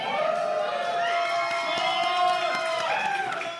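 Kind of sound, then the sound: crowd, audience cheering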